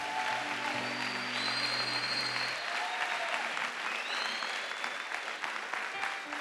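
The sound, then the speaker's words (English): Sustained applause from a large church crowd clapping for the Lord after a teaching, a dense steady wash of clapping with brief cheers and whoops, and a low sustained organ-like tone underneath for the first few seconds before fading. “Clap for the Lord.”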